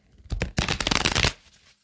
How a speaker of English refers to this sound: I have just the urge to just pause it while I shuffle 7 times, but I feel like maybe there's some people out there that will want the ASMR. The ASMR. I don't know. I have the hardest time shuffling these, especially new decks. Like, they're so stiff.